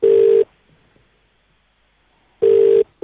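A telephone ringback tone: two steady, buzzy electronic rings, each under half a second, separated by about two seconds of near silence, heard alone with no talking.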